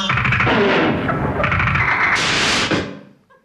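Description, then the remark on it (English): A glass door being crashed through: a loud, dense crash of shattering glass, breaking and clattering for nearly three seconds before quickly trailing away. No one speaks. “It was a glass door and she'd neglected to open it.”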